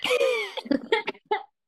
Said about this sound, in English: I'm at that part of the cold where if I laugh, I start coughing, you know? So sorry.